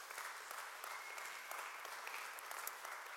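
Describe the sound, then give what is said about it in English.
Steady applause from a crowd, many hands clapping in a dense, continuous patter that holds at an even level throughout, with no voices standing out. “Yeah, I actually do think that is worth a round of applause to everybody who plays their part in those initiatives.”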